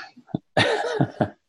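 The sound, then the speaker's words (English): A quick run of dry, hacking coughs, three or four short bursts in close succession, fairly loud, with no speech around them. “Just sort of have a dry cough and they're going to stay far away.”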